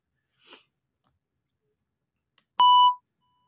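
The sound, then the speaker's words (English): A single sharp electronic beep played from a soundboard, imitating a grocery store checkout scanner ringing up an item, loud, preceded by a soft brief rustle or breathy noise and otherwise quiet. “we got like when you're at the grocery store and they're ringing you out. That's going on the checkout line.”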